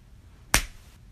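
A single sharp, close punch to the face lands with a crisp, snappy smack, followed by a short fading tail and quiet background otherwise.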